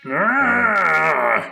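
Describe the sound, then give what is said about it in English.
A creature bursting through the front door into a cabin lets out one loud, sustained groaning yell, raspy and harmonically rich, its pitch rising slightly and then holding steady for over a second before it cuts off. “He prays aloud for a visitor, and then we whip pan to the cabin's front door as the creature slash monster bursts into the room, yelling loudly.”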